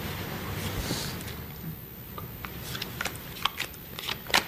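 Keys jingle in a few light, irregular metallic clinks that grow more frequent toward the end, over a low background rumble with no talking.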